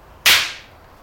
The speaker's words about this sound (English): That, my friends, is the sound of a kendo stick. I'm gonna try not to slap it around too much because it is horribly out of shape and has not been maintained.